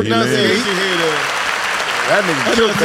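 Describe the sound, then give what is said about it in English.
A burst of applause sound effect, dense and steady clapping filling the whole stretch, with people talking and exclaiming over it at the start and again near the end. “Get that nigga some hand clap, please.”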